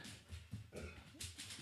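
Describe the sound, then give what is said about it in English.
A dog named Burris barks mean several times outside in short, muffled bursts, over a faint background hiss. “There might be an armadillo outside. Burris is out there barking mean.”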